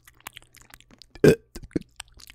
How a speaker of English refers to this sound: I know she likes it when we burp, so I just gave her a little burp kiss. Burp kiss.